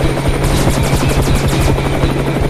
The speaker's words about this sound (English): I don't know if I can get us away from that helicopter.